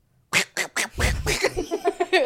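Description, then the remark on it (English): A person imitates a duck with loud, nasal quacks: three separate honks, then a longer one that breaks into a quick, chattering run of shorter quacks. “I can't do a chicken. I can do a duck.”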